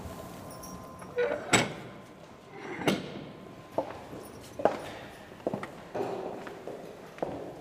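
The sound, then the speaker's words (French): A small heavy prison door with a peephole and shutter, leading to a chapel, is handled with a couple of sharp metallic clunks, then a series of steady knocks and footsteps follows, with no talking. “Et on arrive devant une petite porte dans laquelle il y a un Judas avec un volet et cette porte donc va nous mener dans la chapelle.”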